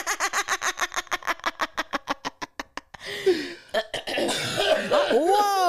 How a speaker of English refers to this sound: Let me clear my throat.